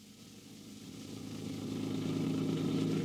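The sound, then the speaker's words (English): A car engine hums steadily, growing louder as it drives, with a low rumbling drone that builds gradually over a few seconds and no voices. “A car, an automobile.”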